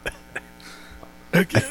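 A person forces out a deliberate, staged cough: two faint, short throaty bursts followed by two louder, harsher coughs in quick succession near the end.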